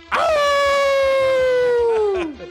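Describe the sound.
A person lets out a long, loud wolf-like howl, a single sustained tone that slowly glides downward over about two seconds before trailing off.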